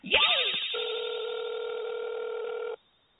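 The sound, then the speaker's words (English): A telephone sounds with a quick warbling chirp for an incoming Puff TV call, then a steady electronic tone held for about two seconds before cutting off abruptly. No one speaks. “Another Puff TV call.”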